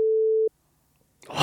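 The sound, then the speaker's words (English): A single steady, mid-pitched censor beep sounds loudly for about half a second and cuts off abruptly. A brief silence follows, then a burst of broad, hissy noise begins. “Oh, beep it out.”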